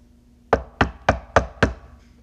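Five firm knocks on a door in a steady, even rhythm, fairly loud, with no voices around them.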